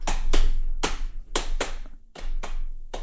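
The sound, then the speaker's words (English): A drum beat tapped out by hand to go along with humming: about eight sharp, slapping hits in a loose rhythm of paired beats, fairly loud, with no voices over them. “So one of you needs to do that, and one of you needs to lay down like a bit of a drum.”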